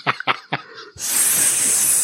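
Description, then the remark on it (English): A few quick voiced syllables, then a person makes a long, steady snake-like hiss, loud and sustained for about a second until the end. “Was he a snake?”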